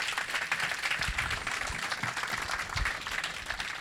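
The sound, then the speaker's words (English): Sustained applause from a crowd for speaker Emmanuel Cole at the end of a talk in an event series, a dense steady patter of many hands clapping at even loudness throughout, with no voices rising above it. “Well, a big round of applause again for Emmanuel Cole, everyone.”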